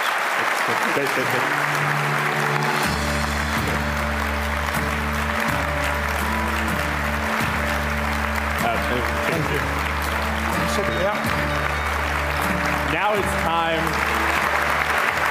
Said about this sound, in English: I see that we're out of time, so folks, let's get one more round of applause, please, for Joan Ryan and Ian Austin.